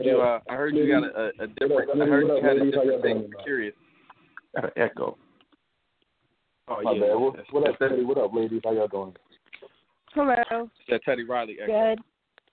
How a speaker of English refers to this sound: Turn your speakers off. Like, can we hear an echo? You talking to me? Yeah, I think they got an echo. Oh, how about now? That's better.